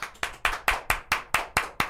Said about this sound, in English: Wow. Claps all around. Good to have you guys here. Wow. Welcome back to the podcast. This is our live studio audience.